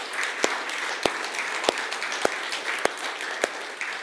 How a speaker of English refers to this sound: I just wonder, can we just show our appreciation to God and to one another for the amazing part that everyone is playing? Why don't we just big round of applause?